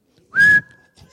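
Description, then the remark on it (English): A single short, shrill, loud whistle blast like a referee's, with its piercing tone trailing off faintly for a moment afterward. “Could I just blow the whistle?”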